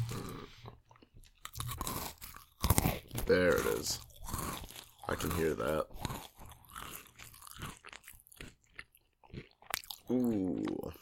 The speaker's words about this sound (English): You couldn't have gotten that close to the mic when you had the crunchy. No, I wanted it to be smacky.